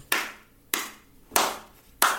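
Four slow, evenly spaced hand claps ring out, each sharp smack trailing off briefly before the next, with no voices or other sounds around them.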